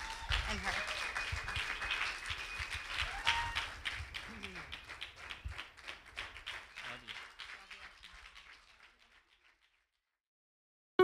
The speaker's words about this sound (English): And today we just want to say thank you for all the hard work, dedication, hours, prayers, and everything you've done for our church. Can we give him a hand clap?